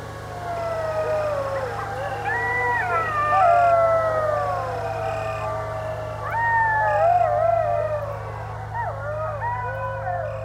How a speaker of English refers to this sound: When I mentioned it in the morning, she explained that I was actually hearing coyotes, and it was probably just two or three of them.